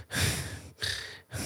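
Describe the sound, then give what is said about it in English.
A voice imitates the slow, heavy breathing of a sleeping person: three long, airy breaths in steady rhythm, each separated by a brief pause, with no talking. “You know when people sleep, their breathing changes?”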